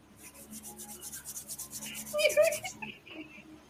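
A cricket chirping indoors: a rapid, steady train of about a dozen high, raspy pulses lasting under three seconds, fairly soft, with a few squeaky tones near the end before it stops.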